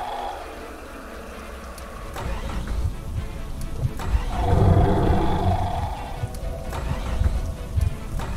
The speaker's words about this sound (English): Finally, the car engine came to life, and Andrew pressed on the accelerator as hard as he could.